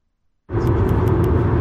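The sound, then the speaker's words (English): A steady, loud low rumble inside a moving car cuts in abruptly after a moment of silence and continues evenly, with a broad road-noise hiss above the deep drone. The car is on its way to TCGSCON North 23, travelling from Chester via Leeds. “Just got in the car”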